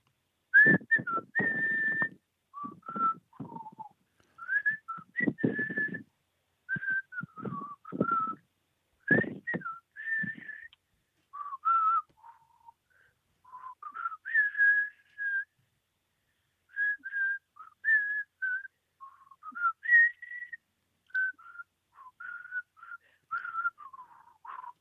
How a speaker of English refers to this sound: Hello, caller. Are you going to whistle us a tune?